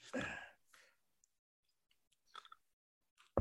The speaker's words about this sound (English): take a sip of our drink and roll. Cheers. Cheers.